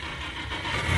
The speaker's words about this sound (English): That sounds like my car. If I'd got one.